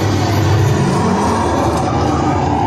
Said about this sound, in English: The Jeep starting up.